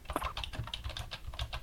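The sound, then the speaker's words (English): Rapid, steady clicking of keys on a computer keyboard as someone types to queue up material, moderately loud, with irregular keystrokes tumbling over one another and no voices. “It's all good, and you'll hear me typing in the background trying to get the stuff queued up.”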